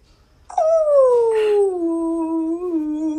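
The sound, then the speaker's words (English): A person imitates a humpback whale call with one long, loud moaning tone that slides steadily downward in pitch for about three seconds, with no other sounds. “So go ahead and just give me your best whale noise. I'm gonna go for a humpback.”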